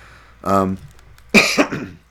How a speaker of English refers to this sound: try not to cough into mic there. Apologize.